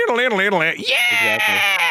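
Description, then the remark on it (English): A loud, high-pitched human scream with wavering, strained pitch, rising into a shrill sustained shriek in the second half, lasting about two seconds. “I shouldn't scream like that.”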